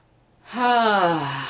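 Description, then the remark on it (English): A single deep, deliberate conscious breath drawn in, loud and slightly voiced, swelling after a moment of quiet and holding steady to the end, with no talking. “I'm going to take a conscious breath right now.”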